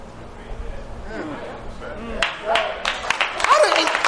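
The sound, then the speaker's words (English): Scattered audience claps break out partway through, a loose burst of sharp hand slaps that grows busier toward the end, mixed with voices. “Clapping has nothing to do with this.”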